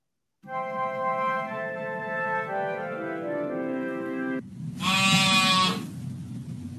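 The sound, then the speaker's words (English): A sheep bleats twice with no talking: first a long, wavering cry that slowly drops in pitch, then a shorter, louder, brighter bleat over a low rumble of background noise. “That night, there were shepherds staying in the fields nearby, guarding their flocks of sheep.”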